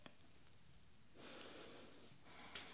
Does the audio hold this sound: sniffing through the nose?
yes